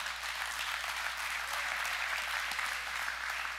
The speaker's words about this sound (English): And that's an okay clap. Don't clap anymore, because those little courtesy claps, I don't deal with that, okay?